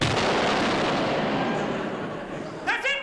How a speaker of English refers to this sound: And this lovely little sequence where there's the sound of a ticking bomb, a door opens, yawning, bed creaks, sigh, smacking of lips, snore, terrific explosion.